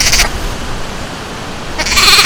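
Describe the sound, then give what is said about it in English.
A five-legged lamb born in England last month bleats twice, a short cry at the start and a longer, louder one at the end, with a steady rustling background between and no one talking. “Well, one exception, 例外, to this balance is a baby sheep, also called a lamb, that was born in England last month.”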